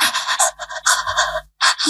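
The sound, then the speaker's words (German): A voice imitates heavy panting, rapid breathy huffs in quick bursts with a brief pause near the end before another breath. “Ich habe mein Schnaufen gehört und ich muss schnell ASMR machen, dass ihr es hört.”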